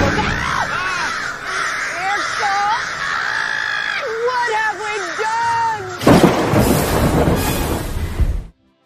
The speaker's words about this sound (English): Those are birds.